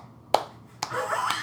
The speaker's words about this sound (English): you hear this one person clapping who probably thinks that everyone's going to start clapping behind him, and he's like, you hear it starting. Oh my God. If that person who's clapping is listening, please let us know.